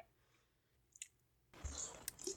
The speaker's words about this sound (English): So we've let this wine sit in the fridge for 3 days. So now we're gonna have a sip of it and see how it tastes now that it's oxidized.